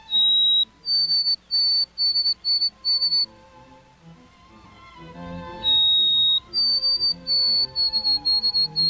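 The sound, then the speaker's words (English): A white-throated sparrow sings twice, the song remembered as "Old Sam Peabody" or "Oh Sweet Canada": each a sustained pure whistled note followed by a run of repeated, slightly higher whistles, clear and loud over a soft low hum. “It's the white-throated sparrow, a bird whose song is unmistakable.”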